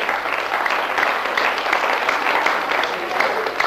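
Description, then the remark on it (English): A crowd applauds steadily for several seconds for a woman coming up to speak. A dense, even wash of many hands clapping continues with no break in the noise. “Give her a clap.”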